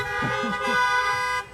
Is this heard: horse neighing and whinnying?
no